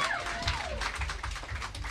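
Audience applause for a performer's wife invited up on stage fills the whole two seconds: a dense, steady wash of many hands clapping at even loudness, with a brief high sliding whistle or cheer near the start.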